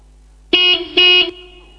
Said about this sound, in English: What we normally do is something like this with our horn.